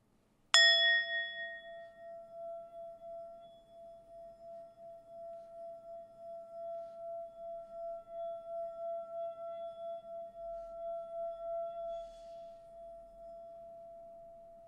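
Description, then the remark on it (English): A small gong is struck once and left to ring, its clear metallic tone sustaining for many seconds with a gentle pulsing waver as it slowly fades. No one speaks. “And I'm gonna gong us in just to like chill the vibe down. I've got a little gong.”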